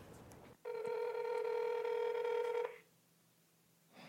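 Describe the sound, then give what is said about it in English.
A single steady electronic ring tone of a call placed on a librarian's borrowed phone to a hotel in Delafield, Wisconsin, holds for about two seconds before cutting off into quiet. No one speaks. “I need to borrow someone's phone.”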